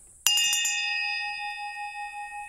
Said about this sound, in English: Please ring the bell. All right, I'll give the bell a ring and see if anyone shows up.